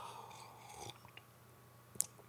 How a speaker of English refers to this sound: I need a sip of beer before I discuss this.